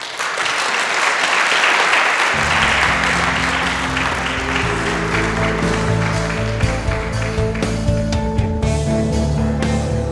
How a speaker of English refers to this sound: Unfortunately, we are out of time for this segment, but thank you both. So great. If we could please give them both a round of applause.